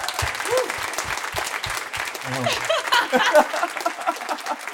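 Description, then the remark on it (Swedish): A live audience applauds for comedian Marcus Berggren with dense, steady clapping that fills the whole stretch, with a few voices and whoops faintly mixed into the crowd noise. “En applåd för Marcus Berggren.”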